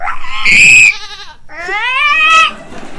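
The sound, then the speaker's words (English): A voice imitates a goat, letting out two loud, wavering bleats, the second longer and rising, with a short pause between them and no talking. “There's like 100 goats, right? And the goats kept going in the sprinklers, like.”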